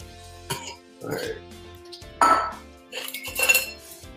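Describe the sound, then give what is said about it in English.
Irregular bursts of sloshing and metallic clinking as a cocktail shaker is shaken, a few sharp clanks rising toward the end, with no steady ice rattle. “On Google, it says a dry shake is when you shake a cocktail at room temperature without ice.”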